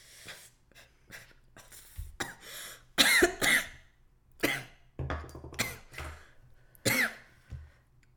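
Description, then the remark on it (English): A person coughs after taking a hit, repeatedly in a series of harsh, irregular bursts, fairly loud, with some throat clearing and rough breaths between them, and no talking. “Pause for a hit. We don't gotta pause. Cough.”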